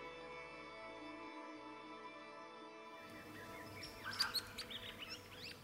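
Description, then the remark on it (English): Shrill, chattering rainbow lorikeet calls break in halfway through, a cluster of sharp screeches and chirps over a steady tonal drone, moderately loud. “What kind of bird? I mean, at the moment, there's a lot of rainbow lorikeets.”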